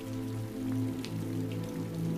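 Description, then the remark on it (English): Steady soft rain patters continuously on a surface, with a low, gentle rumble underneath like a light wind; the sound is even and constant throughout, with no voices. “But tonight, the soporific rain and soft wind offer the ideal soundtrack for sleeping and dreaming.”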